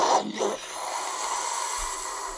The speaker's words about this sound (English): I think that jet was a little far away. It wasn't as loud as it usually is. No, they're not flying low, I guess.